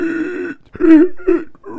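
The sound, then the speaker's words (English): A voice imitates the sound a man made after falling onto gravel and knocking the wind out of himself: a drawn-out strained groan, then three shorter choking, gasping grunts in uneven bursts, fairly loud with no words. “that sound because he knocked the wind out of himself, which is the first time he's ever knocked the wind out of himself.”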